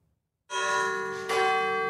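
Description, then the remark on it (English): A large church bell at the National Cathedral in Washington tolls loudly, struck twice in succession, its rich ringing overtones sustaining and overlapping as the second stroke lands on the first's lingering hum. “The bells at the National Cathedral in Washington will no doubt be around for a very long time.”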